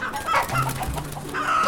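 A large Rhode Island Red rooster named Texas Red clucks in short, busy bursts, with a low steady hum and faint barnyard noise underneath.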